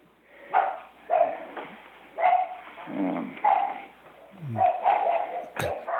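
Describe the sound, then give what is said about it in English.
Several dogs bark loudly in repeated bursts at somebody who has come to the front door, some sharp yips mixed with deeper woofs, with a brief click or knock near the end and no talking. “And your dogs are agreeing. Yeah. Somebody just came to the front door.”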